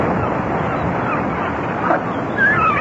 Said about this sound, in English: What's that? Seagulls. At least I think that's what it is.